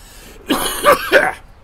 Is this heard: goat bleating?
no